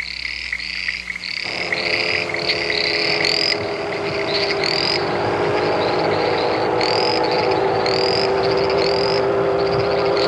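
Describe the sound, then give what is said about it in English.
A motorcycle engine in a Rainier beer commercial roars up after a moment and keeps running loud, its revs climbing steadily, while high, repeated chirping croaks sound throughout. No one speaks. “And it's basically the same thing, only it's a motorcycle.”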